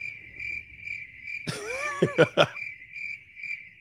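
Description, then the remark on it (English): Steady, high-pitched cricket chirping runs continuously, with a brief burst of coughing breaking in partway through before the chirping carries on alone. “If you are not in a relationship and you are, say, you depressed, you will hear crickets.”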